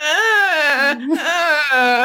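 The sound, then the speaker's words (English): A voice imitates a whining toddler: two drawn-out, wavering nasal whines, loud, with a brief break between them and no real words. “Can you give me a little taste of the toddler whining voice?”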